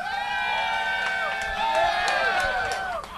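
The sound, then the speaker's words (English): A crowd cheers loudly and steadily to vote that Holmes won round three of a contest, with many overlapping voices shouting and whooping at high pitch for about three seconds before easing off slightly at the end. “Pretty good cheer.”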